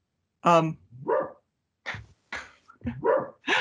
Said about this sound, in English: I'm sorry, I have a dog barking in the background. Hopefully she'll stop.